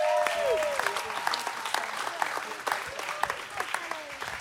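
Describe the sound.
A round of applause from a group of people, dense, steady clapping that carries on for several seconds at a moderate level, with a few voices and short whoops mixed in.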